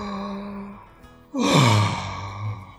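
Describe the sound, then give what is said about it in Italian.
A big, drawn-out yawn bursts in after a soft held hum, breathy, its pitch sliding downward before trailing off into a low, voiced sigh. “Poi fece un grande sbadiglio.”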